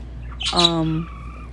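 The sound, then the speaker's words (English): A single loud, harsh bird squawk rises sharply and holds for about half a second before breaking off, with a faint low hum underneath. “And the bird is being loud again.”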